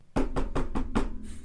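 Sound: knocking on a door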